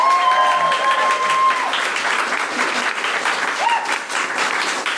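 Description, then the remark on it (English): An audience claps steadily for several seconds for a member of the winning team, a dense, continuous wash of applause from a sizable crowd, with a few faint whistles or cheers rising briefly above it. “Big round of applause”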